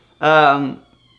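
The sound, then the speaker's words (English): A child, the speaker's little niece, lets out one loud, sustained yell lasting about half a second, bright and tonal with a steady pitch that dips slightly as it trails off, standing alone against a quiet background. “Or, it's my little niece yelling in the background.”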